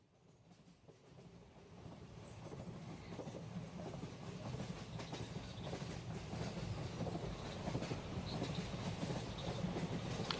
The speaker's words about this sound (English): As the train made its way from Kolkata into the Hindi heartlands of Uttar Pradesh